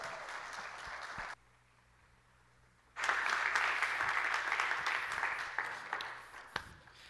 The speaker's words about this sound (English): will you guys give Nick a big round of applause as he comes up to the platform and shares?